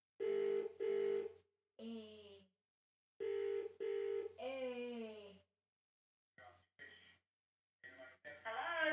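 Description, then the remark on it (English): Short steady electronic telephone tones beep in pairs as an outgoing call to a grandmother is dialed and rings out, while people speak briefly in the gaps between them. “That's enough phone calls after this. Hang on. Let's see if Papa answers first.”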